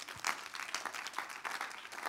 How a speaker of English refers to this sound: Now, let me tell you, it's a good place to clap for Jesus.